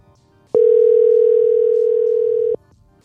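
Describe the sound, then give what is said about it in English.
A single loud ringing tone of a phone call that goes unanswered, a steady electronic hum lasting about two seconds that starts and stops abruptly, with faint background noise and no talking. “He just doesn't answer.”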